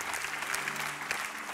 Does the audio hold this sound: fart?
no